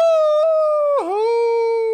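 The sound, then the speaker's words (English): A person's voice imitates a wolf howl: one long, steady, loud howling tone that dips briefly in pitch midway, then carries on evenly to the end, with no other sounds. “Oh, it sucks, because, like, you're a better wolf than me, and you're not even a wolf.”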